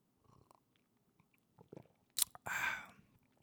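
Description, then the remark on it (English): A wet slurp of pulpy orange juice from a mug late at night: a short sharp intake followed by a longer, louder sip with a faint squishy, pulpy texture. “I got the mug, sipping some late night OJ with pulp, of course.”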